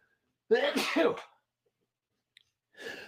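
A loud sneeze bursts out once, a forceful blast lasting under a second, followed by silence and then a brief breathy sniff or rustle at the end.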